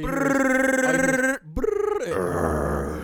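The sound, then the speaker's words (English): A man growls in a loud, rough, sustained voice as an ad-lib on a hip hop song, breaks off briefly, then bursts into a sharp vocal gunshot imitation followed by more raspy, noisy growling. “Her niggas growling and doing gunshot noise at the same time and almost cried.”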